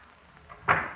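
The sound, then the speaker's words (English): A back door opens and shuts, ending in one short thud after a quiet moment. No one speaks. “I'll go out my back door.”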